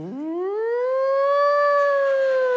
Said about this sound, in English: And it had a wheel bearing out in the left rear wheel so that when you drove down the road, it made a siren sound.